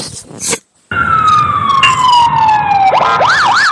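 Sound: siren sound effect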